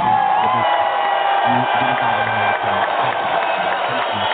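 A crowd applauds and cheers steadily, a dense wash of clapping with whoops and shouting voices mixed in, holding at a loud, even level throughout.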